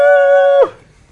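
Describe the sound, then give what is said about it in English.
A single loud, nasal goat bleat holds one steady pitch for about half a second, then breaks off abruptly into quiet background noise. No one speaks. “Someone boop the goat!”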